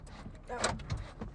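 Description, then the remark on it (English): A car door lock releases with one short mechanical clunk, crisp and fairly quiet, over a low steady rumble and faint rustling. “Oh, unlock the door. You can unlock it from your door.”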